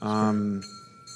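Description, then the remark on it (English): A single bell rings with a bright, metallic tone that swells briefly and then settles into a thin, high shimmer that lingers and fades. No one speaks. “A bell ring.”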